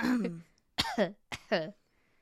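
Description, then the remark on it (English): A voice puts on a deliberate, exaggerated fake cough: a short vocal sound, then two forced, throaty coughs in quick succession, fairly loud, with silence after. “That was a fake cough because I don't need to cough during allergy season”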